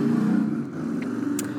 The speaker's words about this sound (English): Ooh, motorcycle.